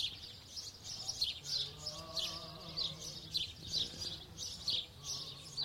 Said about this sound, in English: We've got birds on the one side